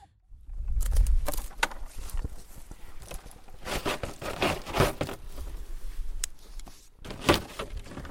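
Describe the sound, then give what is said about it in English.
Hollow plastic tree guards or vine guards in a vineyard clatter and knock irregularly in gusty wind, with clustered bursts of rattling over a low wind rumble. No one speaks. “All the tree guards or vine guards sort of clatter in the wind and you can hear it.”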